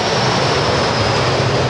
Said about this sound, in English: Hold on, I'm going to let this jet go by.